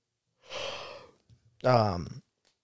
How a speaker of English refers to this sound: So my big yawn. Hold on.